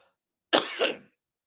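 A single sharp cough bursts out, a harsh, throaty two-part hack lasting about half a second, with silence before and after and no talking.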